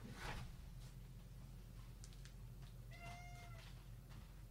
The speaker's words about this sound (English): The cats are going mental.